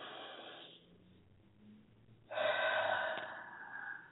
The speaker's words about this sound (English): I want you to be able to release. So let's take a deep breath. Release. One more time.